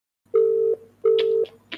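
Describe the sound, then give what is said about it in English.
Two steady, moderately loud ringback tones from an outgoing phone call, each lasting about half a second with a short gap, followed by faint clicks and rustles. No one speaks. “Calling where?”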